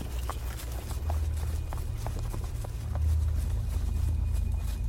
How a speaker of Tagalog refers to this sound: Paminsan din daw po ay may dumadaan at tumatakbong mga kabayo sa labas. Paminsan pa nga po ay parang umiikot-ikot ito sa bahay nila.